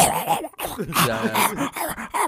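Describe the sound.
A person vocally imitates two French bulldogs struggling to breathe as they are walked up a hill: a run of strained, wheezy snorts and groaning gasps, several in quick succession, fairly loud and raspy.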